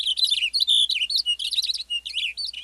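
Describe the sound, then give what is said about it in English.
A Cassin's finch sings a rapid, continuous warbling song of bright, tumbling phrases and quick trills in an open pine landscape, clear with no other sounds around it. “A western bluebird flits from a gnarly branch as a Cassin's finch belts out a rapid song.”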